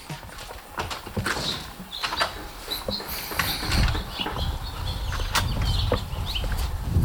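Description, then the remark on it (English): Birds sing and chirp intermittently outdoors, fairly faint against a busy background of low rumbling and sharp clopping knocks. No one speaks. “Maybe go outside and listen to the birds.”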